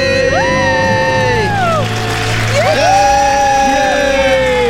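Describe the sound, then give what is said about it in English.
A family from Rochester, New York, screams and cheers together loudly in a debt-free scream on The Ramsey Show after paying off $49,000 in 11 months, with high rising and falling yells layered over a dense, excited din that stays loud throughout. “Let's hear your debt-free scream.”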